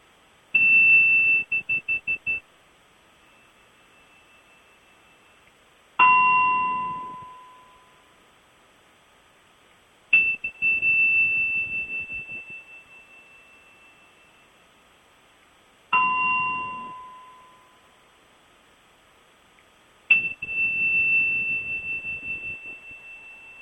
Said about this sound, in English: I think we may hear some Tibetan bells somewhere going ding, ding, dang, ding.